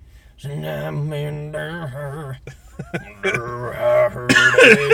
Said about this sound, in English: Thanks for coughing.